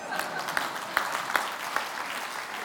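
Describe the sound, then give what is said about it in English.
An audience claps, a steady, dense wash of applause with a few sharper, evenly spaced claps standing out above it roughly every half second. “You can clap, but you don't have to, obviously.”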